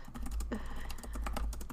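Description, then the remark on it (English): Rapid, irregular clacking of keys on a computer keyboard, fairly loud, with a low steady hum running underneath and no voices. “Don't know if you can hear me typing extra loud.”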